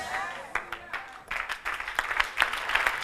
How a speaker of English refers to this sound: Now, listen, everybody stop clapping.